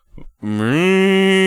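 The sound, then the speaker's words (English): A loud, drawn-out moo from a human voice imitating a cow, starting after a brief breathy intake and holding a steady, droning pitch. “But did the funny part about when they banged that, he was making sounds just like a fucking cow.”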